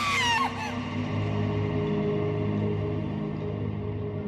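A short, shrill scream from a young woman cuts out within half a second, leaving a low, steady droning hum that carries on alone.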